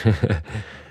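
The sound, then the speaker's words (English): A single voice mimics a startled crowd gasp, an audience reacting to the price of a monitor stand, a quick voiced catch of breath trailing into a longer breathy exhale, fairly loud, lasting about a second. “And like, you just hear the audience gasp.”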